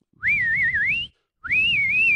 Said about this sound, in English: I just feel like that is such a perfectly placed whistle.